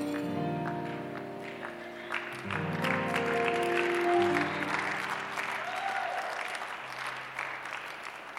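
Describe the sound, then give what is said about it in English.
An audience claps steadily throughout, a dense patter of many hands that swells slightly midway, with sustained organ or keyboard chords ringing underneath. “Anybody clapping, something is happening to your life.”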